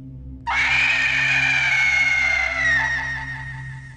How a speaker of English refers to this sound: let out a long, stark, piercing howl that sliced to the nerves of the silent winter night.